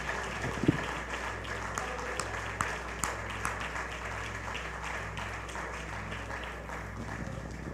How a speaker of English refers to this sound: If you believe that, clap your hands unto the Lord as you're seated and give the Lord some praise.